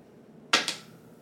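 die being rolled

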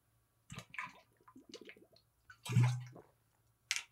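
drinking water

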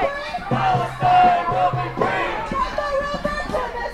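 protest crowd chanting

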